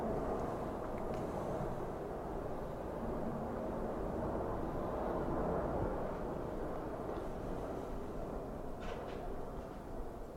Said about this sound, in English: We're gonna enjoy this plane go by.